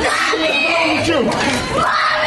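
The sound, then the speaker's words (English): A young child screams loudly at an airport ticket counter, high wavering cries rising and falling over a constant noisy background of a crowded space. “The screams of a young black child as what is apparently another case of passengers behaving badly.”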